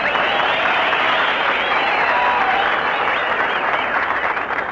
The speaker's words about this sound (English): You got a nice hand. That ain't all they're applauding, brother.